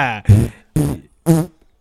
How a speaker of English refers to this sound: My fart sounds. Come on, man. So rude, bro.